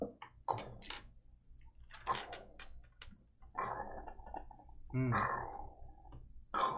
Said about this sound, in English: as you guys kind of hear this like giggling and splashing, you realize it's not one voice but two.